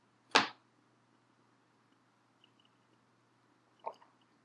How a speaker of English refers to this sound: All right, I'll pause and take a sip of tea.